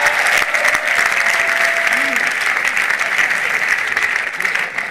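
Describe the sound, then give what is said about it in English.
An audience claps for the Lord during a sermon, steadily and loudly throughout, a dense, continuous wash of applause with no pauses. “Give the Lord a clap, prophet, I'm preaching.”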